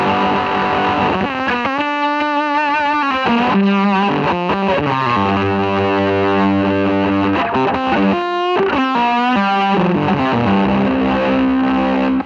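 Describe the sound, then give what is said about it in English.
Heavily saturated fuzz guitar through the High Road fuzz pedal, voiced like a Fuzz Face, plays sustained, thick notes and bends with a dense, buzzing, hissing harmonic tone, loud with no talking, over about twelve seconds. “But it's kind of voiced like a kind of a fuzz face. So it gets that really sort of saturated big.”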